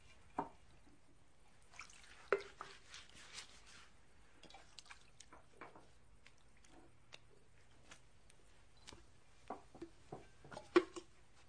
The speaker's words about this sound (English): Then he poured some water into a wash basin and began to wash the disciples' feet and dry them with the towel around his waist.